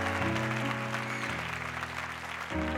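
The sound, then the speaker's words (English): A church audience at Higher Vision applauds the volunteers in a steady, dense wash of clapping that lasts throughout, with sustained keyboard chords playing underneath and shifting a few times. “Can we give all the volunteers, come on, a big hand clap because it's amazing.”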